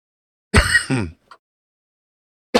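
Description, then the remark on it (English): A single harsh cough with a throaty, rasping edge, followed by a brief pause and a faint click, then the start of another short burst at the end. “Sorry about the cough.”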